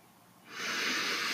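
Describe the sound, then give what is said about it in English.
After a brief quiet moment, an airy deep breath rushes in as a steady, soft hiss and carries on to the end, with no talking. “Remembering our goal and breathing it in. And breathing out our past, releasing it from our being.”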